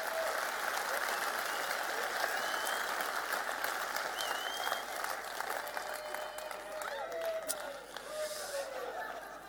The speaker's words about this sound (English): And so what we're going to do now is I'm calling 7 young people up onto the stage. They know who they are, so why don't you give them a huge round of applause while these young guys come onto the stage.